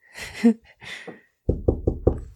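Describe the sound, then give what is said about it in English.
A short burst of voice or breathy noise, then a doctor in a white coat knocks four quick, firm times on a man's truck window in a steady rhythm, each a sharp, fairly loud rap with a low, hollow body. “Taps on his window.”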